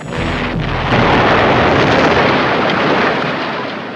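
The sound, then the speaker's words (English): A loud, close explosion erupts into a sustained, rumbling roar that fills the whole clip, with a brief tonal hum at the start and no voices. “Magnum is briefly reunited with an old flame until she apparently dies in an explosion.”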